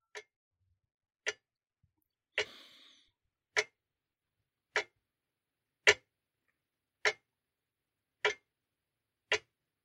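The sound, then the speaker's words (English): A clock ticks slowly and steadily, about nine crisp clicks spaced just over a second apart, with silence between them and no voices; the clock reads 11:58. “It's standing there mocking me still with that infuriating tick.”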